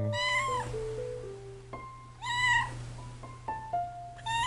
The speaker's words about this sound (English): I hear a meow that sounds a lot like Brohammer